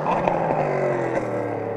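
A race car engine drones loudly and steadily throughout, its pitch holding fairly even with a slight rough, scraping edge, continuous with no voices.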